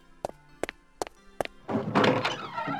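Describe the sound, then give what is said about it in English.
Four firm, evenly spaced knocks on a door, distinct, followed by a swell of louder, busier noise that fills the rest of the moment. “Oh, I wonder who's at the door.”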